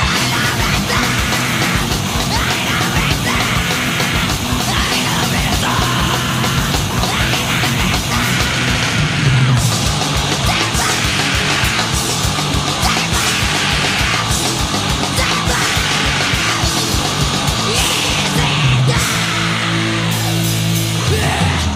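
A fast, relentless powerviolence song blasts at full volume, with rapid pounding drums, thick distorted guitars and harsh screamed and grunted vocals, running continuously with a few abrupt shifts in rhythm.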